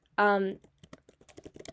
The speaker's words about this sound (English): Sorry, you can hear me typing up.